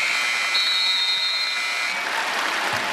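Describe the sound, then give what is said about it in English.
A basketball 24-second shot clock buzzer sounds as a steady high-pitched tone for under two seconds, after the team lets the shot clock run out to honor Kobe Bryant, over continuous loud crowd applause and cheering that carries on after the buzzer stops. “The 24-second shot clock, of course, Kobe Bryant.”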